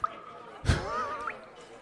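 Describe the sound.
Someone gulps water straight from a running hose turned on full blast inside a restaurant: a sudden splashy burst followed by a wavering, bubbly gurgle, fairly quiet, with no talking.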